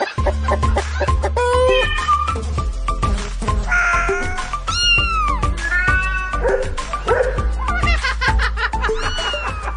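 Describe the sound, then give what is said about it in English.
Several cats meow repeatedly and fairly loud in Sydney, Australia, their rising and falling cries overlapping one another above a steady, booming low musical backing that runs throughout. “He has four cats, one at home, but he also looks after three that live at the park around the corner.”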